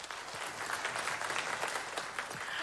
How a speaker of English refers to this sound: I want you to clap if you know of someone that has been divorced. Would you clap?